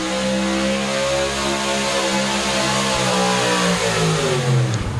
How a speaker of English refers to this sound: Once again, we'll apologize for the brakes there, but we just can't talk over the motors there and the truck and tractor pull.